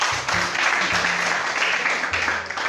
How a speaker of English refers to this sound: I believe we deserve a round of applause for that.